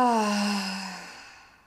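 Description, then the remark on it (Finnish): A single deep exhale out through the mouth during a guided breathing exercise, fairly soft, carrying a faint voiced sigh that slides downward in pitch and trails off into quiet within about two seconds. “Ja ulos sun kautta päästään kaikki irti.”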